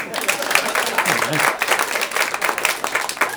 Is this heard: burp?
no